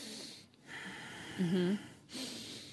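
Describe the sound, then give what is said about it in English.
A person imitates a deep inhale, a short breathy vocalized intake lasting under half a second, moderately loud, with soft breathy sounds around it. “And we're hearing like inhale, like...”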